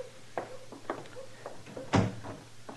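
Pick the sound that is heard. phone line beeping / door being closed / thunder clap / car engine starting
door being closed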